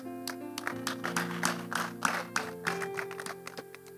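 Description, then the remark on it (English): A crowd claps for a speaker in a steady rhythm over sustained organ or keyboard chords, with sharp, fairly loud bursts repeating throughout and no one talking. “Let's clap for him.”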